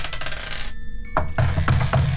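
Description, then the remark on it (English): Dice rolled for a brains roll clatter across a hard tabletop in a rapid, rattling burst, go quiet for a moment with a faint ringing hum, then land again in several sharp, loud clacks, showing another 6 and a 4. No one speaks. “Guess what that banging was? What was that? Another 6? Another 6.”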